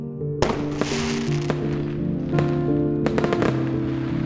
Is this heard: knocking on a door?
no